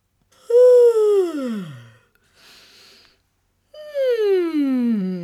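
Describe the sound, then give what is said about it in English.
A person lets out two long, audible yawns as a warm-up stretch before singing, each a voiced tone sliding downward, with a soft breathy inhale between them. Fairly loud, with no talking. “So let's start with a good yawn stretch.”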